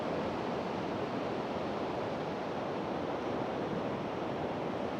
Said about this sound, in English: We're on the beach, on the ocean, breathing in the ocean air. All those negative ions.